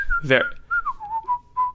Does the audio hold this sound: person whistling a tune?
yes